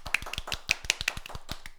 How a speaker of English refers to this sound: So let's clap it up to that. Come on now.